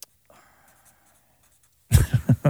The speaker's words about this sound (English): Okay, I'm a mind reader. I'm going to write something on this piece of paper that I know you are thinking right now.